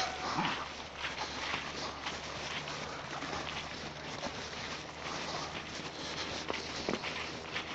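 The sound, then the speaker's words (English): Dogs bark and whimper intermittently outdoors during a dog walk, over a steady wash of ambient noise, with footsteps shuffling along as they walk. No one speaks. “we've had tech issues, we've had dogs barking the whole time.”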